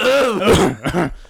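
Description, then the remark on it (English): Someone fakes a cough, a loud, throaty, voiced rasp followed by a second short hacking burst, like exaggerated throat clearing, with no other talking. “You start coughing.”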